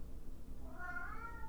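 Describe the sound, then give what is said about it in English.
A domestic cat lets out a loud, drawn-out meow with a rising, wavering pitch, set against a low background rumble, with no talking. “One of my cats is going nuts.”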